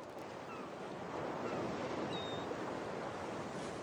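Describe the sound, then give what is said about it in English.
Ocean waves wash onto a shore in a continuous, fairly loud roar of surf with no pauses. Faint, brief high chirps occasionally rise above the rushing water. “We wanted Dragonstone, the waves there.”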